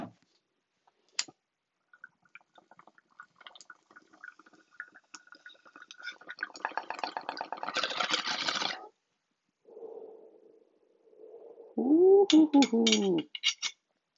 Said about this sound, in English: Cleaning my bowl, packing my bowl. I am smoking some Jack Herer out of my humongous green bear bong, which is actually has green details.